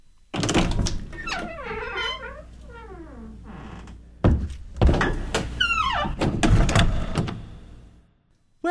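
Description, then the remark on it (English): A door creaks open with long, wavering squeals from the hinges, then a couple of heavy thuds and more creaking. Loud, with no voices. “Okay, should we go through the first door then?”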